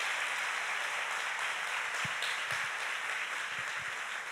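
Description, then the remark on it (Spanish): A crowd applauds steadily for the Lord, a dense wash of many hands clapping at once that holds an even loudness throughout, with a few soft low thumps underneath and no voices. “¿Qué tal si le das un aplauso al Señor por esa marca?”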